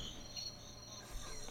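Crickets chirp in a steady, continuous high-pitched trill, fairly quiet and unbroken, with no voices.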